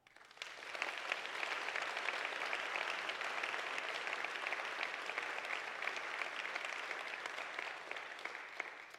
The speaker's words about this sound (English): If you're with me on that, would you clap?